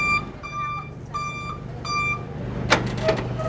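A delivery truck carrying a Florida manatee backs in while being directed, its reversing alarm beeping in long, steady tones over a low engine rumble, followed by a couple of sharp hissing bursts near the end.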